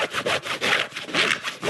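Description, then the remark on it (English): Stiff work-pants fabric rubs back and forth in a steady rhythm, making four or five coarse, raspy swishes of even loudness with no talking. “You can hear how hard they are here.”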